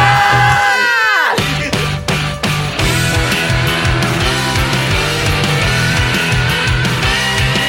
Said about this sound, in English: Yeah, let's end it on a scream. Let's end it on a scream. All right, well. Scream on three. 3, 2, 1.